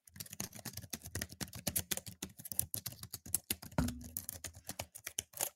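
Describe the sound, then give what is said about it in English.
Rapid, continuous typing on a computer keyboard, dense clusters of sharp key clicks and clacks with a few heavier thumps, fairly loud, with no one speaking. “Fourth person, definitely bring that keyboard and put it at your desk when we go to the studio.”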